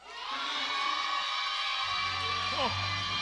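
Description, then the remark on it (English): An audience shouts and cheers together in a loud, sustained roar of many voices, with scattered whoops rising above the crowd noise throughout, shouting as praise for their haters at the preacher's call. “I want you to shout for your haters.”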